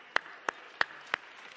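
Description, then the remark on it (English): An audience gives a hand clap for the biblical Joseph: four sharp, evenly spaced claps in a steady rhythm, with a faint background murmur and no speech. “Now let's give Joseph a hand clap.”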